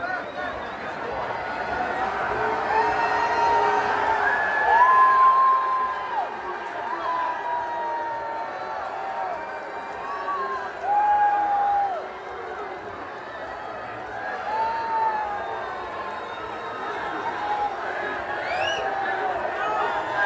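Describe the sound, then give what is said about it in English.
A large crowd boos Donald Trump steadily as he waves to them, for about twenty seconds, long drawn-out voices and scattered shouts merging into a loud, continuous roar that swells briefly now and then. “There's a video clip of Trump waving to the crowd while being drowned out by boos.”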